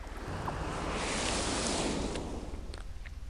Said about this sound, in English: Hey, no fair! You can't just fill the pit with water!